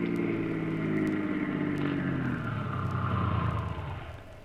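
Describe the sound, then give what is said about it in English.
A car engine hums steadily, its pitch gradually dropping as the car slows down and pulls to a stop near a warehouse after taking a side road off the highway, with no voices present. “Start up. Take the next side road off the highway.”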